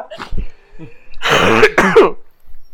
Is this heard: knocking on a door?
no